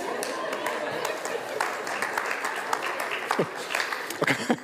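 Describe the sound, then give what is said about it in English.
An audience applauds steadily, many overlapping claps forming a dense, even patter throughout, with a few brief voices or whoops rising over it near the end. “I can't believe you're clapping me in a bad mood.”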